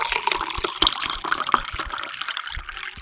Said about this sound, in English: But all right, look, okay, first we got to pour the gasoline into the generator here.